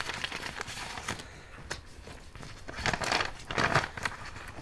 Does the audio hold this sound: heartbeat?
no